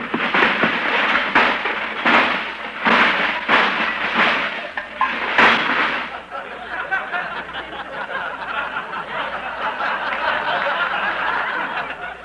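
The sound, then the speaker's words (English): A toy electric train in a store's toy department clatters along with a steady rhythm of sharp clacks, then settles into a continuous rushing whir. It is fairly loud, with no voices. “That was an electric train.”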